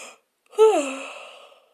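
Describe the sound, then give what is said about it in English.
A single drawn-out yawn, fairly loud, with a voiced, breathy tone that swoops down in pitch and trails off over about a second. No talking over it. “So you can always send them to me in, oh, pardon me, I'm going to yawn, you guys.”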